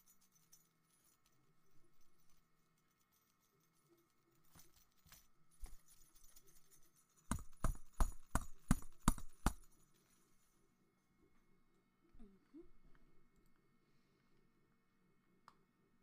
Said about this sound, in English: But first, let's hear some jingle bells.